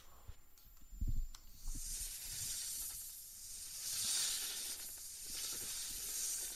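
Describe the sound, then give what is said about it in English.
A loud, airy snake hiss swells and fades in long breathy waves over several seconds, with a few soft low thumps underneath and no voices. “It is time for the snake.”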